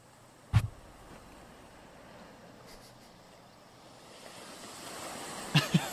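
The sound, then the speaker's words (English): Ocean waves wash in steadily with a broad hiss of surf, swelling louder toward the end, broken by two brief low thumps near the start and finish. No one speaks. “Got some nice waves coming in.”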